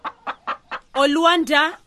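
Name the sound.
chickens clucking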